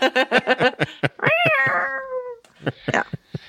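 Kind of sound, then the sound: animal, cats meowing and caterwauling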